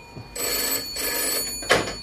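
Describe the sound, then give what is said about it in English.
A telephone bell rings in two bursts with a brief gap between them, its bright metallic trill clear, with no one speaking over it. “Oh my God, it's the telephone.”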